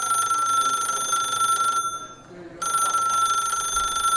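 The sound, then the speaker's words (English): A telephone rings loudly, a long shrill electronic trill that stops for a brief pause and then starts again. No one speaks. “Well, why don't you phone me? Phone me now okay.”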